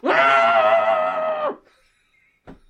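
A single loud, sustained scream muffled into a pillow, lasting about a second and a half before cutting off, followed by near silence and a brief soft thump.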